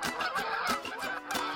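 Canada geese honking in a dense, overlapping chorus, several loud nasal calls repeating in quick irregular succession, continuous with no voices.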